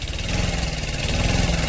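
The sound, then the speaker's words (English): An old lawnmower engine runs steadily as someone mows a lawn, a loud, continuous low throbbing drone with a buzzy rattle on top and no pauses. No one speaks. “Pulls out the old lawnmower and starts mowing the lawn.”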